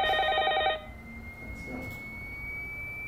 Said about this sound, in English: The point is, the phone could ring at any time.